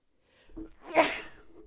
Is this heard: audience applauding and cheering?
no